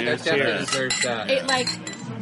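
Glasses clink together in a toast, several bright chimes over about two seconds, mixed with overlapping voices and murmuring.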